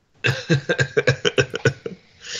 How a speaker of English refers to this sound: I paid $13.50 per pack for this fucking cough.